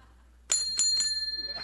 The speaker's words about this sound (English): as a token of our gratitude, you have something you probably always wanted, your own very own cable car bell. It's quite heavy, and it sounds great. If you'd like to give it a ring, please do so.